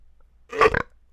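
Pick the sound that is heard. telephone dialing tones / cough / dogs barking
cough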